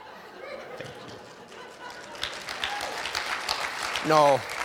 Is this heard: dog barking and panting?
no